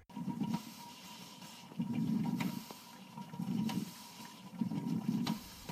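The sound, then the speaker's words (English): A coffee percolator bubbles on a stove as boiling water rises to the top and falls through the grounds, its watery gurgle swelling in steady pulses about every second and a half, with small pops and ticks in between. Fairly quiet, with no voices. “This constant reboiling of water is what gave the percolator its distinctive sound.”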